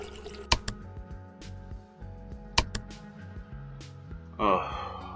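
Hot water running from a tap: a few sharp drips and splashes over a low steady hum, then a short gush of running water near the end.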